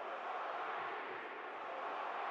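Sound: arena crowd chanting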